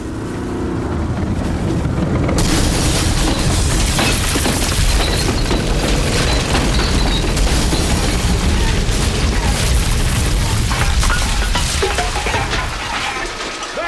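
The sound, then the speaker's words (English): Loud, continuous battle din of booming cannon blasts and rumbling armored tank engines, dense, swelling up after a brief quieter opening and roaring on without pause. “Cannon, Jenkins. Division of Armored Tanks, Pancho.”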